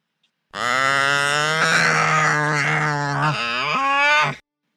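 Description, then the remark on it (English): A Tauntaun cry sound effect: a long, loud creature cry, a single bellowing, moo-like call that lasts about four seconds, with a rough, wavering pitch that dips and then rises near the end. No one speaks. “Hey, you need to add a sound of a Tauntaun cry in post.”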